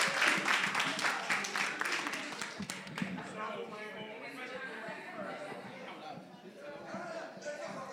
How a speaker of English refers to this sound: All right, clap for them. Clap for them.